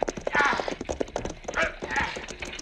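Horse hooves gallop fast and steady as riders try to slow runaway horses, a dense rhythmic pounding that runs the whole time, with a few brief vocal cries or calls breaking in over the hoofbeats.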